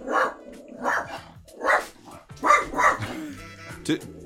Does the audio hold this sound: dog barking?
yes